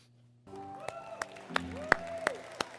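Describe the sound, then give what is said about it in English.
After a short silence, an audience breaks into applause for children after a Christmas story video: a broad wash of crowd noise with several loud, sharp claps standing out at irregular moments, and some tonal cheering or whistling mixed in. “Wild applause for all of our kids there.”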